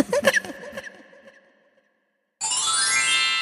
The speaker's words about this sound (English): Ding dong.